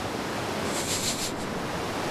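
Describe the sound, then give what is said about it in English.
Ocean waves wash and crash against a boat in a steady, hissing roar, with one brighter splash swelling up midway through. No one speaks. “The waves are crashing against the boat.”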